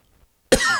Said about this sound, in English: That was me coughing.